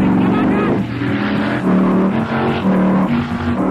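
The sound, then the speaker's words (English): Loud racing-car engines roar continuously, their pitch rising and falling in repeated revving surges, as two cars strain side by side at full throttle, neck and neck. “There you are, neck and neck, nip and tuck. When suddenly, your cars accidentally hit each other and whoa!”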